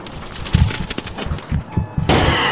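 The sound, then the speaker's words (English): A cockatrice rams repeatedly against a closed elevator door, a series of heavy, irregular thuds and bangs, ending in a sustained, harsh crash of noise. No one speaks. “Damn thing tried to ram it.”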